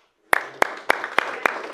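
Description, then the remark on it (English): A church audience clapping hands together for the praise and worship team in a steady rhythm, six sharp synchronized claps about a third of a second apart, ringing out with reverberation over a low background hum. “You know, it's all right to give them a hand clap.”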